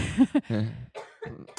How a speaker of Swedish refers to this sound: Oj, nu fick jag ett sallen hostattack. Oj, oj, oj, oj.